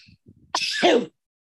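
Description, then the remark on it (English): A person lets out one loud sneeze, a sharp explosive burst lasting about half a second, preceded by a few soft breathy sounds and followed by silence. “Yeah, that was me sneezing Will Ferrell out of my in that movie out of my system.”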